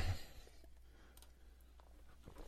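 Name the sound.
computer mouse clicking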